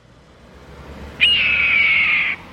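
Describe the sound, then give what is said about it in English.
A single loud call of a large brown, mottled hawk perched on an overhead light post along a freeway, a drawn-out, slightly descending scream lasting about a second, rising abruptly over a low, steady rumble of background noise. “Driving the freeway, perhaps just inching along in traffic, you happen to glance up to an overhead light post where a large hawk sits in plain view.”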